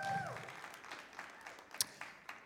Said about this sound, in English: yeah, I got some guys clapping for that.